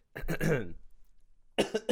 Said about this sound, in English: Hopefully my COVID doesn't get involved with all the coughing.